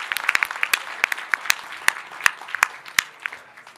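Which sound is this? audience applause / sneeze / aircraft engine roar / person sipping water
audience applause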